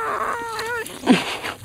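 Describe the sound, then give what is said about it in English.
Air squeals out of a hole in the punctured stomach of a deer carcass being cut open with a knife, the stomach wrapped in a plastic bag: a short, wavering, bleat-like whine, then a louder gurgling, sputtering burst. No talking. “It's just because there's a hole somewhere in the stomach and air's coming out.”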